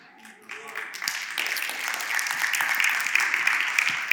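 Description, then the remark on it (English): A crowd breaks into applause that swells quickly and holds steady, dense overlapping claps filling the space at a loud, even level. “So when we clap, man, we clap.”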